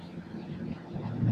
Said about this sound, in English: I was just about run off the road there by a truck. Whew, that was scary. There's this one section of road I drive on where trucks always seem to come into the other lane.